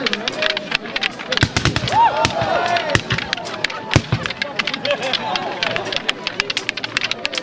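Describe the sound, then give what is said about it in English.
Rapid, irregular clacking of sticks struck together by a murmuring crowd in an orchard in snowy January, making noise to drive away the evil spirit, punctuated by a few louder, sharper bangs like a gunshot cracking out. “So we're banging sticks together and apparently someone's going to shoot something.”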